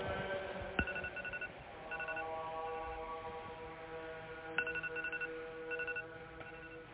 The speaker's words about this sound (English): Yeah, that's part of the recording of your alarm. Yeah, that was me waking up going, I fell asleep, oops, and I was trying to figure out where in the world the alarm was coming from.